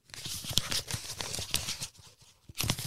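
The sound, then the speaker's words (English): Busy rustling and crinkling of paper slips being stirred by hand in a bowl as someone draws out a topic, with sharp crackles and soft papery shuffles over a few seconds, pausing briefly before a final burst. “Does that sound like it's really me shifting through paper to get out a topic?”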